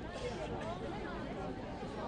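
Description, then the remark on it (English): Dense crowd chatter from a hikoi crowd squashing in along Aotea Square, Auckland, near the Town Hall, where barricades are up and the crowd spills towards Wakefield Street; many overlapping voices blend into a steady, loud murmur with no single speaker standing out for the whole two seconds. “We're all kind of squashing in up along Aotea Square, where there have been barricades put up, and the crowd is spilling up towards Wakefield Street.”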